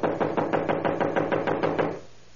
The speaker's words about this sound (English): I'm wearing out my knuckles on this door. Well, try the bell. I did. Not working, as usual, in these places. Well, knock again.